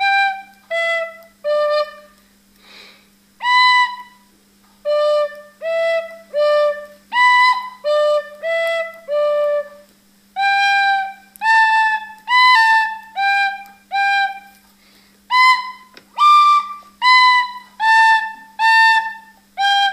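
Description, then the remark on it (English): A schoolchild learning the tin whistle plays a simple tune alone, a steady run of short, clear notes with brief gaps between phrases, fairly loud over a faint low hum. “I've been learning the tin whistle and I'm going to play Kalipuka”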